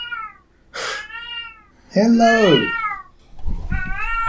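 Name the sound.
cat meowing loudly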